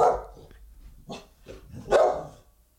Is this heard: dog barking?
yes